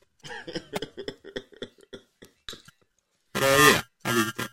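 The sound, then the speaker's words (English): A man talks briefly, then after a short pause lets out two loud, harsh coughs in quick succession, the first longer and rougher than the second. “Let me start coughing right now, dude.”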